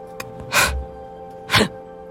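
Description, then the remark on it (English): Two loud, heavy breaths, about a second apart, each a harsh rushing inhale-like gasp, with quiet steady background hum between them and no talking. “I'm breathing weird, aren't I?”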